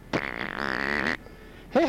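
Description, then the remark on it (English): A loud, drawn-out fart lasting about a second, buzzing and wavering in pitch, from the Leo the Farting Leprechaun character on the Toxic Wise Ass Show radio program, then a short quiet gap before another burst of sound begins. “the Farting Leprechaun”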